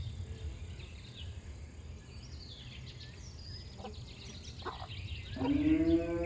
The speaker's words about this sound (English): There are some sheep here on the farm, and it's soon time for the farmer to shear them. It's the end of summer, and they need a little trim. There are a few baby sheep, ewes, running around too.